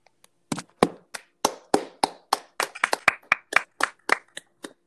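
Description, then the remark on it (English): Hands clapping in a quick, uneven burst of roughly twenty sharp claps, loud and crisp, with no talking over them. “I applaud you.”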